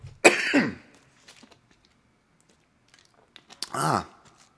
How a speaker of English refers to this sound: And my cough reminds me that I forgot to take my nasal spray. An allergy, that's supposed to help that.